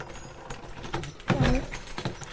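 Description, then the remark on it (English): A bunch of keys for locking up jangles in a series of bright, irregular metallic clinks and rattles lasting a couple of seconds, with a brief low murmur partway through. “Yeah, you got a key, love.”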